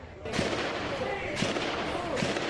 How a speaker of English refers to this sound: Chaos on the streets. It was a war zone in Jersey City, New Jersey. You can hear hundreds of rounds being fired. It started at Bayview Cemetery, a police operation that went bad.